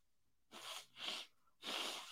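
A person with inflamed sinuses blows their nose in three harsh, breathy honks, the last one longest, with brief pauses between and no talking.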